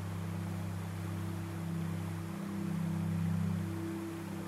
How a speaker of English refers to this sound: This episode's soundscape is going to transport you to deep within a mystical forest where we will listen to the sounds of a waterfall.